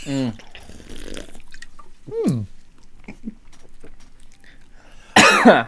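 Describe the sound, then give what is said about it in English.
Small sipping and gulping noises with a few strained vocal sounds, then a sudden loud, harsh cough bursts out near the end after swallowing a mango fizzy drink, its bubbles caught in the throat. “I got bubbles in my throat and that hurts so bad.”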